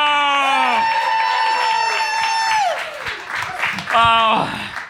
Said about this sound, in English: All right, everybody, give a big round of applause for your 3 other hosts and producers of SpecScript.